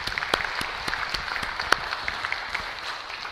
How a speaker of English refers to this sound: Give them a clap. Isn't that great?